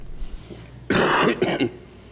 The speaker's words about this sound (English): Yes, I still have my cough.